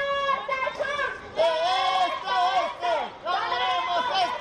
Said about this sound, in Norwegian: Den yngste av dem har tatt med seg en megafon som hun roper høyt og bestemt i.